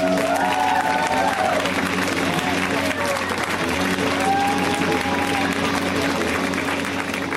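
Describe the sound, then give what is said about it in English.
A crowd at a comedy show claps loudly and steadily for several seconds as a performer is introduced, a dense unbroken roar of applause with scattered cheers and whoops rising above it. “So please, ladies and gentlemen, a rousing round of applause for the amazing and good friend”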